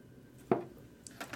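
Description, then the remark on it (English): A plastic gallon jug of green tea being handled: one solid thump, a short pause, then a few quick clicks and crinkly plastic scuffs at moderate volume, with no one talking. “Trying to get to this gallon of green tea.”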